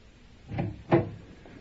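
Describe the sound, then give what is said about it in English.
A door opens and shuts as someone lets themselves out: two dull wooden knocks less than half a second apart, the second a bit louder, then quiet with no voices. “You needn't go to the door with me. I can let myself out.”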